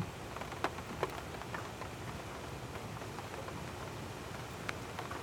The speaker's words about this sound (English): Do you hear that? So that's the rain outside my window. You can't hear the lightning. The lightning stopped, I think.